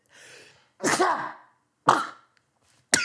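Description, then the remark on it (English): A quick run of loud sneezes: a breathy intake builds into a strong burst, then two sharper sneezes follow in short succession with brief silences between. “Am I really gonna spend the last eight minutes of my podcast fucking sneezing?”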